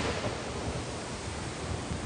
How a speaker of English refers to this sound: I'm gonna leave you with the sound of the ocean, okay? It is the sound of the ocean.